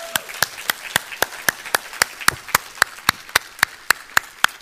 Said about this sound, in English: Let's give the Lord a clap of praise this morning.